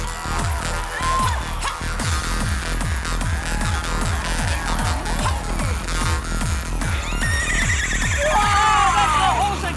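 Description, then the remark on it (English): A woman, standing still, imitates a horse on her own, letting out a loud, wavering, falling whinny near the end, over a steady thumping beat that pulses throughout. “But she's doing all those horse sounds and shit on her own.”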